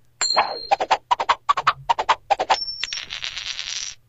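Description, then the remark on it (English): A coin-flip sound effect from an Alexa smart speaker, asked to flip a coin: a short chime, then a quick run of about a dozen bright metallic tings, ending in a sustained high ring with a shimmering wash. “All right, Alexa, flip a coin.”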